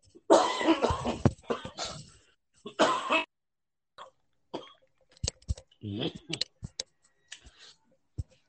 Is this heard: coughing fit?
yes